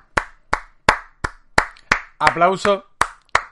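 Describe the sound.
Steady, evenly spaced hand claps, about ten sharp slaps in a row, applauding a presentation intro made from the opening of The Office, with a brief voice calling out over the clapping partway through.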